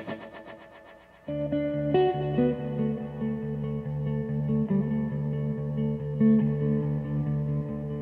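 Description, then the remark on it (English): Sustained electric guitar notes of a riff ring out through a wide, echoing reverb from the echo space effect on a Big Sky, each chord blooming into a shimmering wash that hangs and overlaps, loud with no voices present. “But it's this echo space effect on the Big Sky.”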